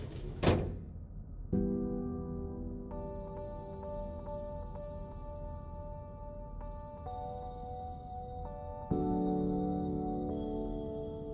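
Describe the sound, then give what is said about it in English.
A heavy metallic thud rings out at the start, followed by long, resonant mechanical hums and whirring tones that shift and restart several times, as cranks are turned, a platform descends into the floor, and two thin metal panels slide together, closing the hole with a thud. No voices. “They continued to turn the cranks even after his body was gone, and two thin metal panels slid together, closing the hole with a punctuating thud.”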